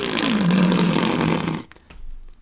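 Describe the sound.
A voice imitates a deflating balloon with a loud, sputtering, buzzy sound whose pitch slides downward, held for about a second and a half before cutting off abruptly.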